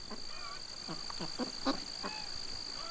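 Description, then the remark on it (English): Ducks and chickens call in a farm crop field: a series of short, nasal quacks and clucks over a constant high-pitched drone of insects such as crickets and bees. “His fields are buzzing with noises. Crickets, bees, chickens, ducks.”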